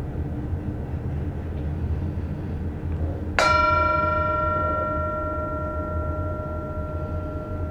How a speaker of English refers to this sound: So I am going to invite the mindfulness bell to sound, and we're all invited to just enjoy the sound of the bell in this present moment.